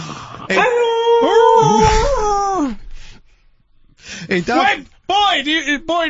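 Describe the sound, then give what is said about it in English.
A dog whines in a long, wavering, high-pitched cry, then lets out several shorter whimpers after a brief pause. “That dog!”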